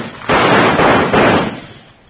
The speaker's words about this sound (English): somebody shot the lantern out.